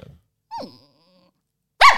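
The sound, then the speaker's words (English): A person imitates their own small Bichon Frise dog, making short growly yaps: a faint grunt, then a sharp pitched yelp, a pause, and a louder, rougher bark at the end, alone. “A Bichon Frise, but she's now dead. So that is the voice of my dead dog.”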